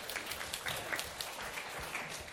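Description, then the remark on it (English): Audience applause, a dense, steady wash of many hands clapping at once, sustained and moderately loud throughout with no voices standing out. “Give David a big round of applause.”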